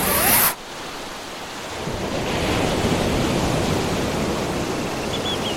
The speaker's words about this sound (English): Ah, yes. The sound of the ocean, the sound of the seagulls, the sound of the breeze, the warmth of the sun, the feeling of sand between your toes.